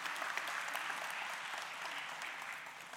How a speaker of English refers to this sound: You can give them a round of applause.